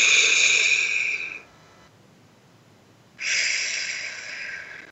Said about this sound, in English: See how big you can make your belly? That means you're taking the breath all the way in and out through your mouth like through a straw.